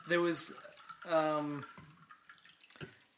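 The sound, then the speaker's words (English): Coffee trickles and drips into a cup in a short pour, with a voice sounding briefly over the start before the faint splashing trails off. “Time to pour more coffee.”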